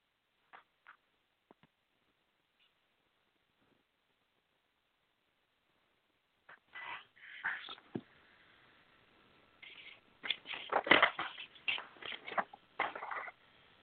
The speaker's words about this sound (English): Paper's rattling desperately. I'll go ahead and narrate all the sound here.